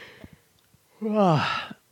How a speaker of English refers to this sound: Sorry for yawning.